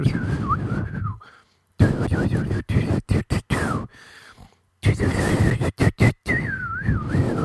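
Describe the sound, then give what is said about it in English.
Someone whistles a bird's warble, a wavering mid-pitched tone in several phrases separated by brief pauses, over a rough, scratchy background noise. “And that's when the warbling stomach, my stomach was like a bird in the air. Is that, what? How does the bird warble?”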